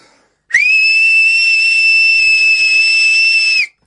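A single loud, piercing human whistle holds one high steady pitch for about three seconds, starting abruptly and cutting off cleanly, with no talking.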